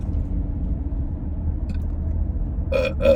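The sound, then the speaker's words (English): A person burps on request: two quick, throaty burps arrive back to back near the end, fairly loud, over a steady low rumble of background noise. No one speaks. “Do you want to give me a longer burp if you can?”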